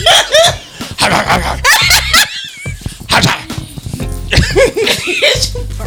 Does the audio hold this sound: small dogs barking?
yes